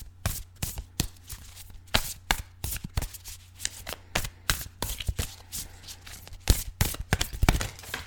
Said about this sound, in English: It's 50 affirmation cards to help you help yourself without the self-helpiness. I think that sounds like a good one to use for our first episode here. So let me give it a shuffle and we'll see what cards fall out for us this week.